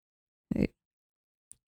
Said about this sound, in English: he comes back out holding a large yellow, you know, a big yellow envelope that crackles like it's got old paper inside.